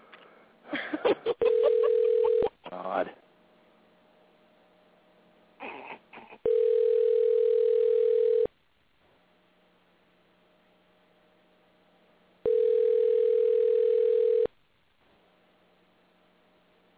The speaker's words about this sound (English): Well, we've got another phone call to make. We roll from one to the other to the other to the other.